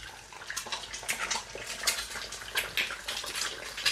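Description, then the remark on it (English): Two eggs crackle and sizzle as they fry in a quickly heated pan, their edges crisping. A steady, bright hiss is broken by quick irregular pops and spits, fairly loud throughout with no talking. “And you can hear that really nice kind of crispy crackling sound.”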